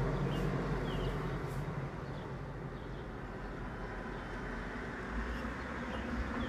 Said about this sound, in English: We live on Lakeshore Drive, lots of people, lots of traffic, beautiful view, and lots of traffic. You can hear some trucks, truck driving by.